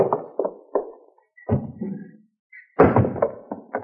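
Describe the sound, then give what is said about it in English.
A store's side door opens and swings shut with a few solid wooden thumps and rattles as Hopalong Cassidy sneaks in, followed by a louder bang and some clattering movement, with no voices. “And he comes sneaking in my side door.”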